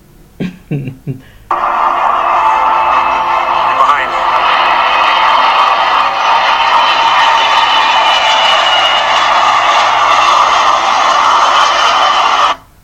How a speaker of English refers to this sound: Also in this video, they just now showed that loud noise was a him racing a plane. They're really close to a runway and a plane was landing and he's going like 45 miles per hour next to the plane and he's keeping up and he even like beats it